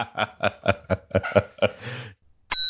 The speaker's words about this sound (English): Reagan, you may ring the bell